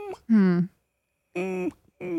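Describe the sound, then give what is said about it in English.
A voice imitates a puppy whimpering: a couple of drawn-out, tonal whines with wavering, sliding pitch, separated by a short pause, and a third whine beginning at the end. “I give it a puppy dog sound.”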